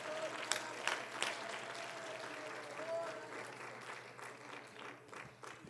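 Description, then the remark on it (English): An audience claps their hands together to give Jesus praise, a dense, steady wash of applause, with a few sharper individual claps standing out and a low hum running underneath. “Oh, let's clap our hands for a moment and give Jesus praise right now.”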